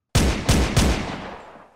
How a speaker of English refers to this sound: gunfire!